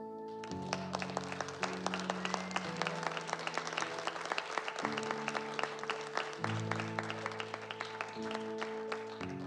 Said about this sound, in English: So would you join with me this morning in giving a great applause